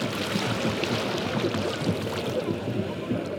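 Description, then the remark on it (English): Arabian Sea waves wash against the shore in a steady, continuous roar of surf, with no single crash standing out, filling the whole scene at a constant level. “He passes around a tray of karanji, a coconut dessert shaped like the half moon, as the waves crash on the shore.”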